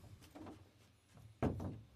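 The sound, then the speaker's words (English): Someone bangs on the front door: a few muffled thuds followed by one sharp, louder bang, with no talking. “You know, random people banging on the front door like we owe them pizza money, but right.”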